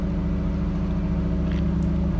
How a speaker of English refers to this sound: Well, the neighborhood's starting to get noisy here. They're starting up cars and stuff.